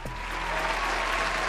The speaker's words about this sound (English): I need to get a round of applause for you before you even answer.